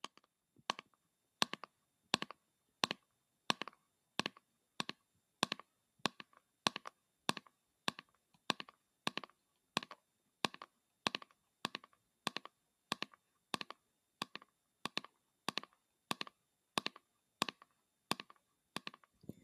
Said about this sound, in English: It could be an everyday sound, such as rain or a crackling fireplace, or it could be more specific sounds, such as tapping like this.